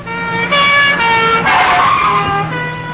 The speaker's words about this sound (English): If the thief doesn't stop and surrender, a tape recording in the base of the handbag will play recordings of police sirens.